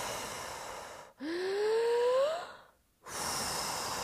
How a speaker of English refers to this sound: And it would be gasping, but very, very controlled, like so.